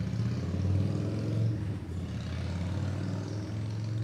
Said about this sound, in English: Just selfish. His motorbike uses selfish. I think it's a Harley too. With their loud vehicles.